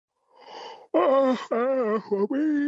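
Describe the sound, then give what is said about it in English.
A drawn-out yawn: a breathy intake of air gives way to a loud, voiced groaning exhale that wavers in pitch and breaks briefly before trailing on. “Excuse me, just yawning.”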